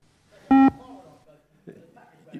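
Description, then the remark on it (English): A single loud electronic beep from a fitness bleep test, short and sharp, followed by faint voices talking in the background. “Okay, it is in fact the bleep test, and I think across universally it is a dreaded sound.”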